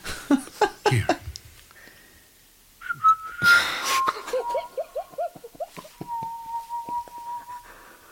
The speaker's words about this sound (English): I've made up a tune for you. Would you like me to whistle it for you? I will. I guess he was just moved by a melody. It's a whistle of love. Oh, the love whistle.